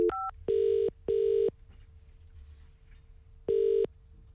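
A few brief dialing tones from a phone as a call is placed to a friend's mother, then three longer identical tones with pauses between, like a line ringing out, clear with no talking.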